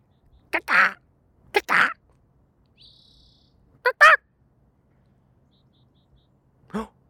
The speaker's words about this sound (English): Guys, maybe I should actually go do something about this bird.